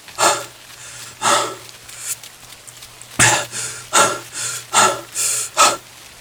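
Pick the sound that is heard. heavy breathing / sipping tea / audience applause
heavy breathing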